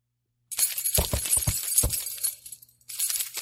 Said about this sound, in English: Listen to these keys. Listen to these keys. I wish I could hear what these keys were thinking.